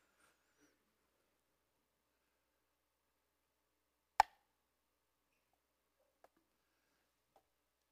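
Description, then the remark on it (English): A single quick plop as one tablespoon of fluid from a dog's abscessed mouth drops into 128 ounces of water, sharp, surrounded by near silence with a couple of faint clicks afterward. “I'm going to pour one tablespoon.”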